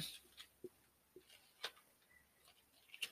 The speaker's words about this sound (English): Let's go to Luke right quick. First chapter. Can you hear my pages turning? I love my paper Bible.